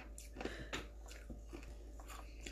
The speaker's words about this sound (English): What did you just crunch? Ice.